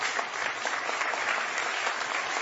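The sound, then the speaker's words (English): A crowd claps steadily in dense, continuous applause for a couple of seconds, holding an even level throughout with no voices over it. “don't everybody all clap at once.”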